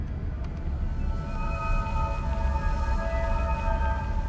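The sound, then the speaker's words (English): A string of eerie, sustained musical tones like chimes, coming from a station's instrument panels, rises and hangs over a steady low rumble, with several pitches sounding together for a few seconds. No one speaks. “I keep hearing these series of chimes, almost like music coming from the instrument panels.”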